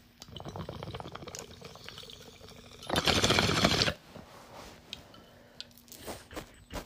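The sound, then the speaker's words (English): Steady, rapid gurgling of water bubbling through a bong for about three seconds as someone finishes the rest of a hit from the bowl, then a short loud rushing burst, followed by faint clicks and rustling. “Okay, let me finish this rip, the rest of the rip I have in here, and then I think I'm going to pack another one.”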